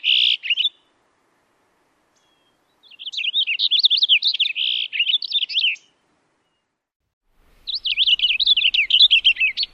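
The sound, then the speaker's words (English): A Cassin's finch sings rich, rapid warbling phrases, a brief opening snippet followed by two long, bright bursts separated by short pauses, clear with no voices. “First the house finch song, and then the Cassin's finch song.”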